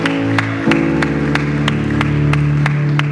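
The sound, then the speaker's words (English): An audience at a Foundation Church morning service claps for two or three individuals, a steady, even rhythm with sharp beats landing about three times a second over sustained, held musical chords; no voices stand out. “Can we give these two, three individuals a huge round of applause this morning?”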